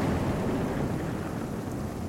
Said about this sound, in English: It's raining. Thunder and lightning striking overhead.